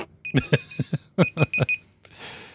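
A timer goes off with two quick bursts of four sharp, bright electronic rings, loud, followed by a soft hiss as it stops.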